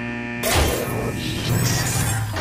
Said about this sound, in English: Unlocking cell door.